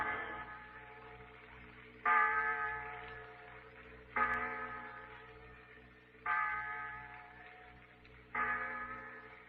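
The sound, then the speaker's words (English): The clock bell in the insurance tower strikes six o'clock in slow, evenly spaced strokes about two seconds apart, each deep, resonant tone ringing out and fading before the next. No one speaks. “The clock in the insurance tower, Pete.”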